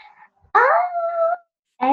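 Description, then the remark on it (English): A five-month-old Pomsky puppy named Atticus, a Pomeranian mixed with a Siberian Husky, lets out a drawn-out, wavering howl lasting under a second, with another short howl starting at the end; loud, with no talking. “He's a Pomsky, a Pomeranian mixed with a Siberian Husky.”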